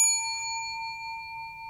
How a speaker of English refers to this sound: It's a good sounding bell. A very nice bell.